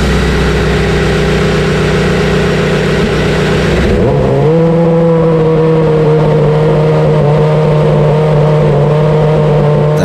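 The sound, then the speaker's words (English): The loud V8 engine of an RB7 race car fires up during a live demo, a rough roaring burst settling within seconds into a steady, high-pitched idle drone with no voices. “Now, we want to give you a sense of the sound a live demo has to offer, so shut your eyes and have a listen to our RB7 firing up here.”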